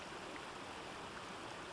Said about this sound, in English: The rain had come. A tropical downpour of refreshing raindrops, which washed away the heat of the day.